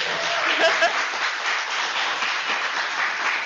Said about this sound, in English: Thank you guys for supporting us, and we are here at New York Super Week. Please give us a round of applause.